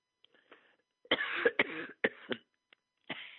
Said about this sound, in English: I'm going to be coughing, I can tell. Uh-oh. remember when a cough was just a cough? Man, those were the good old days.